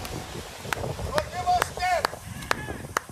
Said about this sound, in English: I'm sitting here clapping